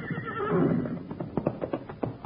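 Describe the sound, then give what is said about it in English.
A horse whinnies with a long, wavering neigh, then hooves clop in an uneven rhythm, growing slightly louder as the horse approaches. No one speaks. “Now, if that ain't the smartest horse on 4 feet.”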